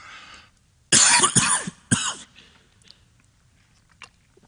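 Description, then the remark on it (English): A loud cough bursts out in two or three harsh, raspy hacks in quick succession, then fades into quiet breathing and faint background noise. “I got a cough.”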